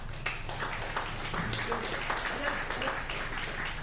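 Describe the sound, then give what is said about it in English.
Polite applause from a crowd, given on request as a sound to edit in later: steady, moderate clapping with a dense, even patter that holds throughout, with a faint murmur of voices underneath. “Just give us a polite applause like you just seen something you just kind of bought it up.”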